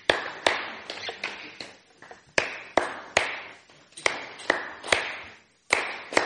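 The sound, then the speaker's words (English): A group of people clap their hands in sharp, uneven bursts, roughly a dozen crisp claps over several seconds with brief gaps, moderately loud with no talking. “Everyone, clap your hands thrice.”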